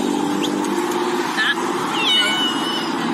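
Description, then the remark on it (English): A steady, loud roar of traffic on a busy highway in Ohio runs throughout, with a few high, short meows from a cat stranded in the middle of the highway, being rescued by a woman and a police trooper, rising above it and indistinct voices mixed in. “A woman and a police officer were able to save a cat stranded in the middle of a busy highway in Ohio.”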